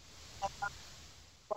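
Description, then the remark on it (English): Three short, nasal goose honks ring out over a faint background hiss: two close together, then a pause before a third, louder honk at the end. “It was actually a geese.”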